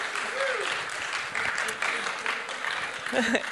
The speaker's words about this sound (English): Getting all children together and looking gorgeous on Mother's Day morning is a feat. I think we should give them a round of applause. They look amazing.